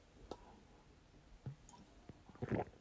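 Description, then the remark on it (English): Quiet mouth sounds of someone drinking water: a few soft clicks and gulps spaced apart, ending in a slightly louder wet sip and swallow, with no talking. “Maybe I should take a drink of water before I come back saying I'm better than ever.”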